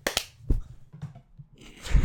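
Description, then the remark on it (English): Two sharp, quick claps ring out, then scattered thuds and knocks build to a loud, rumbling clatter as a microphone tips over and hits the surface. “Yeah, the microphone fell over when I clapped.”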